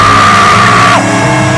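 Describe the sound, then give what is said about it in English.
An audience shouts and yells together, screaming "amen" after a prayer, loud and sustained, one held cry riding above the din before dropping off, the roar continuing to the end. “Clap your hands if you agree with that prayer and scream, amen!”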